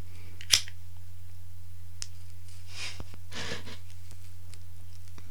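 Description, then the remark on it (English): A lighter is flicked to light a joint with one sharp click, then a fainter click, followed by a couple of soft hissing bursts over a steady low hum. No one speaks. “Watch how smooth this looks when I light it.”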